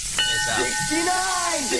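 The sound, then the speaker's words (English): A rain stick being shaken, giving a steady, sandy hiss of trickling beads throughout, with a voice humming or talking underneath in wavering tones. “for overusing the rain stick.”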